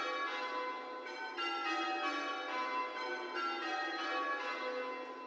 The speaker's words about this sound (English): but with the St. Bartholomew the Great bells, much easier to hear these individual sounds.